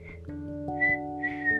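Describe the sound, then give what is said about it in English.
Someone whistles short, high bird-like tweets, three or four brief chirps and trills, imitating a bird, over a steady low droning tone that continues throughout. “Is that some bird tweeting?”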